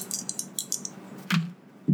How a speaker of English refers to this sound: Seriously? not a great roll on the dice. I rolled a 5 plus 1, 6, so I'm at 6.